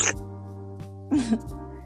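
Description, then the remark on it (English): A voice imitates typing with a few short, irregular mouth bursts, squeaky and clicky, over a steady low hum. “that's what typing sounds like.”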